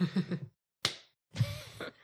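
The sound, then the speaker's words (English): A single sharp hand slap of a high five, ringing briefly into silence, with murmured vocal sounds just before and a longer breathy, voiced noise after. “I give you a high five.”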